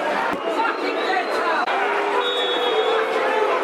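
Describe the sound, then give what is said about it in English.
A large football stadium crowd at a Millwall match against Stoke, 38 minutes in, murmurs and chatters restlessly in a dense, continuous wash of voices, steady and fairly loud throughout, with no single speaker standing out from the hubbub. “38 minutes, you can start to hear the reaction of the crowd. It's becoming restless, dear listeners, becoming restless.”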